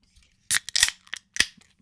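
A beer can is cracked open: a series of sharp metallic clicks and a crisp pop with a short fizzy hiss, bright and fairly loud, with no talking.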